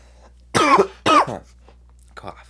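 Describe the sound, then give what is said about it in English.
Two loud coughs in quick succession, each a harsh, slightly voiced burst, followed by a brief pause and a faint little throaty sound. “Cough.”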